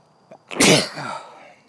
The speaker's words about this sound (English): hold on, I'm about to sneeze.